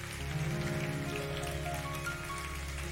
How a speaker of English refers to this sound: Yo, that's a golf clap. Can you act like people just made the greatest decision ever?